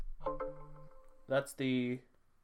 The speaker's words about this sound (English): That's the Windows hardware failure. What a pleasant sound. If you're hearing this noise, please consult your IT department. It's bad.